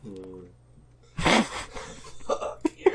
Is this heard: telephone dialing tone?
no